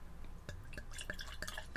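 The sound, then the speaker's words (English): Beer pours from a long-neck bottle into a brewery anniversary glass in a quick run of glugs and drips, with light ringing splashes and a faint fizzy hiss, fairly quiet, no voices. “And the pour.”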